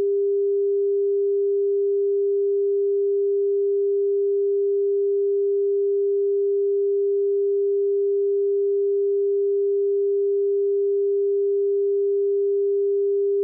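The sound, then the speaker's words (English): A long censor beep bleeping out an address, one unbroken pure tone held at a steady mid pitch and constant loudness for about thirteen seconds, with no voices or other sounds. “If you beep it, it's going to be a long beep.”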